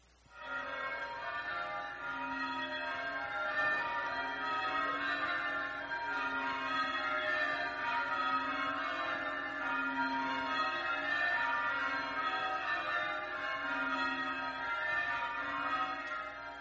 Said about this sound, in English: But the bells of Christmas, you know, that we think of bells and we think of one bell in a tower ringing, but Christmas bells are different. Listen to this 10-15 second recording of Christmas bells from one of the churches in the English villages.